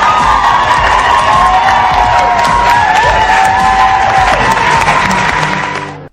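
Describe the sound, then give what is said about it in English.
A loud crowd of New York State legislators cheers and applauds steadily for about six seconds over an abortion bill, with whoops and raised voices mixed into dense clapping before it cuts off abruptly. “That is elected officials of New York State cheering an abortion bill.”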